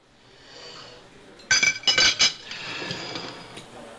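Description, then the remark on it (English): A quick burst of clinking silverware, several sharp metallic hits close together, followed by a softer scraping slide of a plate along a kitchen counter, recorded as the sound of finishing dinner and pushing the plate away; fairly loud with no talking. “For example, I couldn't find the sound of finishing dinner and pushing the plate away, so I recorded that clatter of silverware and sliding of a plate along my kitchen counter, and then I used that in episode 7.”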